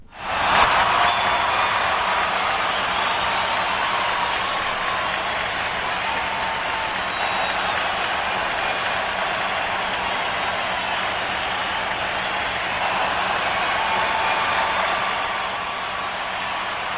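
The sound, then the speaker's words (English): Sustained applause from a crowd, a dense steady wash of clapping that holds at a fairly even loudness for about seventeen seconds before easing slightly near the end. “Oh, that's a long set of applause.”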